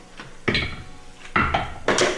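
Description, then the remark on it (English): Percentile dice, rolled during a tabletop role-playing game, tumble across a tabletop, three sharp clattering bursts of hard little bounces, each rattling briefly before settling, with no talking over them; they land on 70. “Nope, that's a 70 on the dice.”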